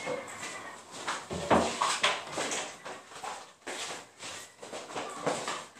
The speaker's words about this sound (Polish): Zamknę drzwi.